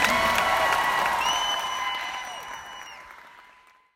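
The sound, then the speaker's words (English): A crowd applauds with dense, steady clapping and a few whistles rising above it, then the applause thins and fades away over about four seconds. “Well, let's give a big round of applause to you.”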